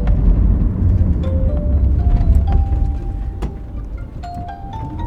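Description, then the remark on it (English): A car engine labors up steep, rocky, twisting roads through the Biria forest just north of Tzfat, Israel, in a heavy, steady low rumble, with a whining tone rising in steps as it strains, plus occasional clicks and rattles; no one speaks. “And the car I'm in sounds like its engine is just barely up for the job.”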